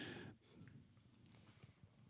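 Quiet chewing of crunchy chips, with irregular soft crunches following a brief breathy burst at the start; no one speaks.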